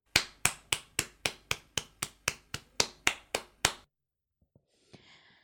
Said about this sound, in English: All right. The next one. Now somebody spanking an ass. One more time.